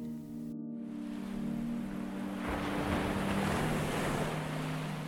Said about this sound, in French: Je vais maintenant vous demander d'écouter le son des vagues.